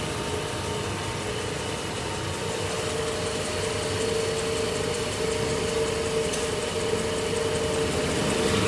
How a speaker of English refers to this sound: As well as that, there's a lot of the brass in the wheels that are badly tarnished, so we have to polish it up. So he's turning the wheel on the lathe and burnishing it with a tungsten burnisher. So he's polishing up the wheel.